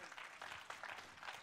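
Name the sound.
audience clapping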